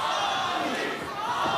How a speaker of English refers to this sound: With Nico Ali Walsh's Saturday night debut, third generation of Muhammad Ali's family joined the ranks of pro boxing, giving the crowd at Hard Rock Live in Oklahoma a chance to chant this.